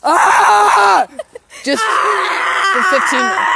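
A person yells loudly in strained, wordless bursts, with a brief pause of gasping sounds before the shouting resumes at full force.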